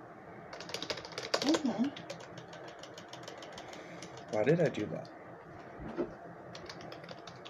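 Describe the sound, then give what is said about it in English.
Rapid, uneven clacking of computer keyboard keys runs through the whole recording, fairly loud, with a man's voice speaking briefly over the typing. “I went on my keyboard for like no reason.”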